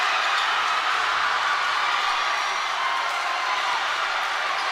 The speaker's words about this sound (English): Wow, the Campbell crowd storming the court, and on the other side, the spectrum of emotions.